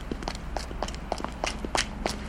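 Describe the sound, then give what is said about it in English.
Quick footsteps of a woman on pavement in a film scene as she starts moving faster, a steady run of sharp, evenly spaced steps at a brisk pace, moderately loud, with a low background hum and no talking. “She starts moving faster. We hear her footsteps.”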